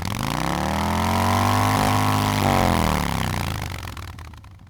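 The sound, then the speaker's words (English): A motorcycle is started with its key and left running, its engine roaring with a loud, steady rumble, its pitch swelling slightly and easing back before the sound drops away near the end. No one speaks. “He mounted the bike and keyed it.”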